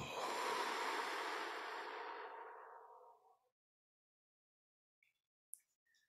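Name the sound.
deep breath exhaled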